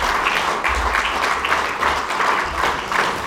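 A crowd breaks into steady applause, many hands clapping in a dense, continuous patter that stays loud and even throughout, with no voices rising above it.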